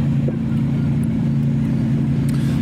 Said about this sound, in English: The boat sounds like it's right on top of us, but I just had the mic turned up too high. It goes away in a second, I think.